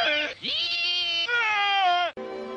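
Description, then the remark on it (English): A pig squealing loudly, a few long, shrill, strained squeals run together with brief breaks, rising and wavering in pitch. “Squeal louder.”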